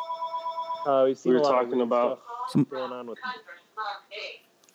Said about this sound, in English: What the hell is that? A phone. That's a call.